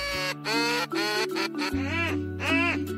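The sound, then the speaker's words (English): A series of loud, nasal duck-call quacks in quick rhythmic bursts, clear, with no one talking, blown at a hunt test for retriever dogs. “Duck calls are quacked.”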